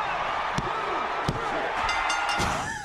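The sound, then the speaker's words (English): A referee's three-count: three loud mat slaps about a second apart, ringing out over a busy wash of crowd noise and indistinct voices. “And every time we knock them out, we're going to, you know, the three count.”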